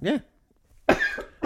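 A couple of sharp coughs: one short burst, a brief pause, then a harsher, rougher cough with a raspy tail and a hint of another starting at the end.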